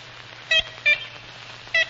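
Three short, nasal, horn-like honks of an ivory-billed woodpecker, the first two close together and the third after a pause, over a faint steady low hum.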